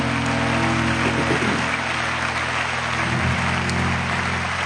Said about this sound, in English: And I think all these that are involved, musicians, singers, they deserve a hand clap of great job they're doing.